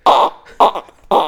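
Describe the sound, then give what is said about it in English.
A voice imitates a duck with three loud, raspy, nasal quacks, evenly spaced about half a second apart, each short and buzzy with a bright, honking edge. “That is a duck. Geese don't. They like honk.”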